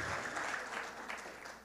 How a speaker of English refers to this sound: Praise the Lord. If you're Pentecostal, give him a hand clap of praise. Glory. Hallelujah.